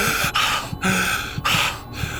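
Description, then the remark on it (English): A sharp gasp followed by loud, heavy, ragged breaths, repeating in quick succession as if someone is panting hard after jolting awake, with no talking. “You always feel at this point like you're going to give some speech that explains everything perfectly, and then you wake up just breathing really heavily.”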